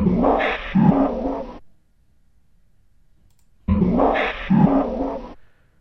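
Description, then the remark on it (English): A recording of a growling animal, played back greatly slowed down through a filter: a low, rumbling growl-like sound plays twice, each burst about a second and a half long, separated by a couple of seconds of near silence; the tone is deep and drawn out. “All super slowed down.”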